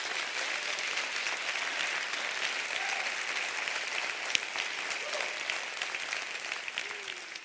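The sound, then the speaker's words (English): A large church audience claps loudly and steadily throughout with hands raised, a dense, sustained wash of applause with no pauses or speech standing out. “I want you to put your hands up here and clap real big.”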